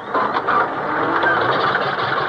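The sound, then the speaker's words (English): A car engine cranks continuously without catching, a steady, fairly loud churning whir with a faint rhythmic pulse that never turns into the roar of a running motor. “Why doesn't it catch? They've done something with the engine.”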